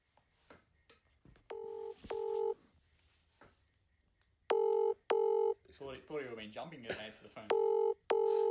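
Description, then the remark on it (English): An outgoing phone call to a team member, who does not answer, rings out: loud electronic ringback tones in paired bursts repeat three times with short silences between, and a faint, indistinct voice murmurs in one of the gaps. “Thought he would have been jumping and answer the phone.”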